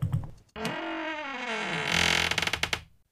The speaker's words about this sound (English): And all you will hear, all you will know when it begins, is the static, the wind. Can you hear it? It's almost here.